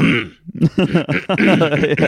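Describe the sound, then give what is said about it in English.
A voice mimics someone clearing their throat, producing a loud, gravelly, gurgling rasp that runs continuously for about a second and a half after a short breathy start. “Yeah, it's like, it sounds like they're clearing their throat.”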